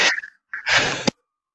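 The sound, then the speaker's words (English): A single harsh cough: a short breathy lead-in, a brief pause, then a loud raspy burst that ends in a sharp catch. No one speaks during it. “Sorry, I had a cough there.”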